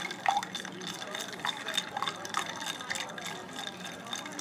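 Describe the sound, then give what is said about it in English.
Ice is added to a cocktail of Tito's vodka and dry vermouth and stirred, making a steady stream of light, rapid clinks and rattles with a faint liquid swish underneath, fairly quiet throughout. “Here, we're gonna add ice. Stir.”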